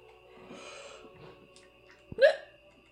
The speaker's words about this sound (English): It sounded like a video game hiccup, like a little, like a click noise from like an old school Mac. Specific? Yeah. There was a very specific sound that I can hear in my head.